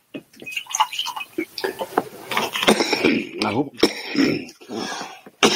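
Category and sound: human body sound, coughing and throat clearing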